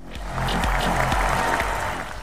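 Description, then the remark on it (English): A short burst of applause, dense crackling clapping at steady loudness for about two seconds, with no voices over it. “That was like a 1 second applause.”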